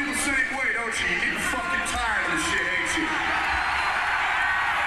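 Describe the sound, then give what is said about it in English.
A large crowd cheers and shouts together, many voices blending into a steady, loud roar that holds for the whole stretch, with occasional higher whoops rising above it. “Decidedly less mixed reaction there.”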